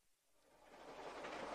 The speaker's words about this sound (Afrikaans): Die trein het 'n lekker beat as hy so skud.